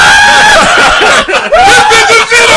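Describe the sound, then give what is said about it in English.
A voice lets out a loud, drawn-out mock scream, wavering in pitch with a couple of brief breaks, filling the whole moment with no other talk. “You know he starts screaming.”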